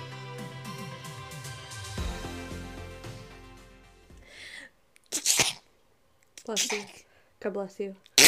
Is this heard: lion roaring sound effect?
no